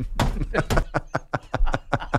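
A hand slaps a desk about ten times in a quick, fairly steady rhythm, each slap a loud, sharp smack, with some voices mixed in underneath.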